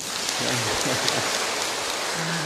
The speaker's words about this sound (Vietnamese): Nghe cũng khá có lý ha. Để cho tràng pháo tay.